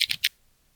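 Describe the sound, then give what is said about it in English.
Three quick, crisp keystrokes clatter on a computer keyboard, close and clear, in a brief burst before falling silent. “So it will be like Marvin Brown pondered to himself, should he join the Blurs of Ross chat, as he typed away at his keyboard.”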